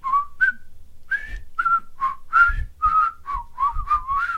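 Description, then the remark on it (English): Two people whistle a bouncy tune together, the notes short and separated, their timing slightly out of sync, with soft low thumps underneath and no talking. “Well, we need to work at synchronizing our whistling.”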